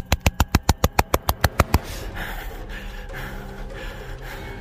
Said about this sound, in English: Hearing nothing but my own heartbeat and the zipper's teeth pulling apart. Wait. What? The zipper on the closest one moved slowly downward.